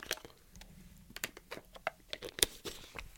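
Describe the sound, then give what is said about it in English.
Someone takes a quick drink of water: a run of soft, irregular clicks and faint crinkling handling noises, with one sharper snap near the end and no talking. “I'll take a drink of water real quick.”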